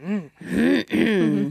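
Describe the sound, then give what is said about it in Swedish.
Someone clears their throat in three voiced bursts, a short one and then two longer, pitch-wavering grunts, fairly loud and with no speech around them. “Jag sitter ju alltid och harklar mig. Nu kom det.”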